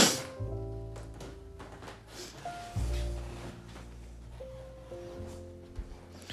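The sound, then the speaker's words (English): Low, groaning creaks and dull thumps from an apartment building, caused by activity in the apartments above and below, come and go in several drawn-out bursts, fairly quiet, with no one talking. “I apologize if you're hearing a lot of creaking. There's some activity going on above and below me today in this apartment building.”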